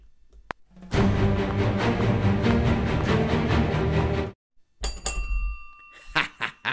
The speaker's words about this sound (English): So I'm going to push the little sting button on my stream deck that plays the music, and then I'm going to get the bell out.